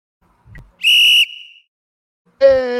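Two loud, shrill whistle blasts blown into a microphone: a steady high tone lasting about half a second, then a second, lower-pitched blast after a pause, with a soft thump before the first.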